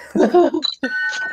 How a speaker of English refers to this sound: Okay, round two is gonna be a buzz in round. So I wanna hear your buzzer sounds again.